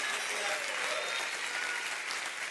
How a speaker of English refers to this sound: Go, clap your hands.